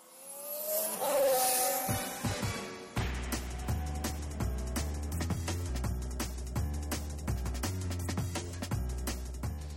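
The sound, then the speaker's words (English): A high-pitched racing car engine whines and sweeps past over the first few seconds, then a loud, steady beat of bass-heavy music takes over for the rest. “Cars? Yes, cars. Fast cars.”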